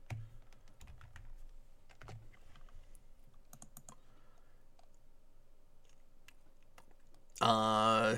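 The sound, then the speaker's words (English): Scattered, irregular computer keyboard clicks and short bursts of typing while copying and pasting, quiet, with pauses between keystrokes, before a sudden louder tonal sound cuts in at the very end. “So I can totally copy-paste. I have no idea why last time I was typing these out.”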